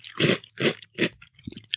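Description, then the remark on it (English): Loud crunching of crisp, gently curved graham cereal squares glazed with brown sugar syrup and honey being chewed, three strong rhythmic bites followed by softer, scattered crackles, with no talking. “the squares gently curved, they are glazed, absolutely glazed with that brown sugar syrup and honey. There's a good crunch to them.”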